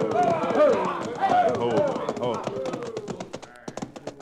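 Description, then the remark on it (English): Horses' hooves pound in a quick gallop as riders chase after bandits, with voices shouting over the first half; then the hoofbeats turn sparser and uneven as the horses are reined up. “the Chamber of Commerce was on their own horses and streaking after the bandits wide open.”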